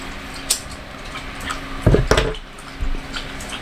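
An old dog laps water from a bowl: wet, uneven slurps mixed with a few sharp clinks and knocks against the dish, the loudest bursts clustered near the middle, with no one talking.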